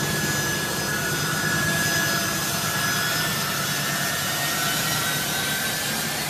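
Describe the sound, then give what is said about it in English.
A loud, steady roar of a C-17 military transport jet's engines as it tries to take off, with a high whining tone layered over deep rumbling, sustained without a break and no voices present. “This is a C-17 trying to take off.”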